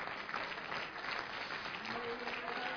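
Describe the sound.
An audience at a church service claps hands to the Lord as they are being seated, in a steady, dense wash of applause that holds at an even level for a few seconds, with a faint murmur of voices beneath.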